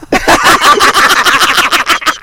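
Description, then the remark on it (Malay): A person mimics a sparrow's chirping in a loud, rapid string of raspy, wheezy little bursts that runs for a couple of seconds. “Burung pipit pun bunyi tak garang tau. Kecil je. Macam mana, macam bunyi ni, man? Itu burung ada asma.”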